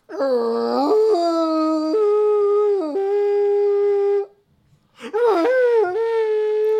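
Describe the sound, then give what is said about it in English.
A voice imitates a character blasting what looks like a conch or a horn, a long, steady, droning tone that dips in pitch a few times, pauses briefly, then sounds a second, shorter blast. No talking over it. “Okay, you see him reach down onto his waistband and he pulls out what looks like a conch or a horn, and you hear him blast the horn.”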